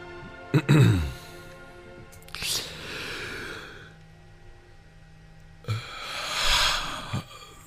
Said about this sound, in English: You're not doing it long enough. That wasn't a good yawn, though. That was a forced yawn.